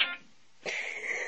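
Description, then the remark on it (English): A phone that someone forgot to silence rings: a brief high electronic tone, a short gap, then a sustained bright ringing tone that carries on to the end. It is fairly quiet, and no one speaks. “Somebody forgot to silence their phone.”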